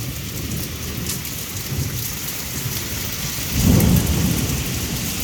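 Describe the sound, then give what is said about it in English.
Heavy rain from a thunderstorm in Washington, D.C. pours steadily, a dense hiss with scattered drops striking surfaces, filling a sunken patio with water, while a deep rumble of thunder swells midway and rolls on. No voices are heard. “This episode is brought to you by the sound of a Washington, D.C. thunderstorm.”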